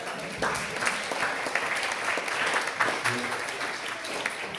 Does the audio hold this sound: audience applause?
yes